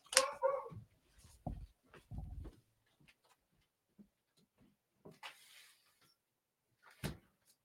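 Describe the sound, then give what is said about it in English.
A dog barks a few times, then come the clatter and thump of a home window next to the back door sliding shut, with a final sharp bang as it closes; no one speaks. “I'm gonna close my window here real quick because my dog is barking.”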